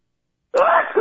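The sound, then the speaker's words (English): After a stretch of silence, a single loud sneeze bursts out abruptly and carries a voiced, drawn-out tail to the end. “You know, I've been trying to do a show when the whole time I thought I was going to sneeze.”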